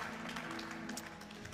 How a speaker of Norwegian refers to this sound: Ja, han en kjempegutt, og gi han en spesiell klapp også da, denne unge gutten der. Amen.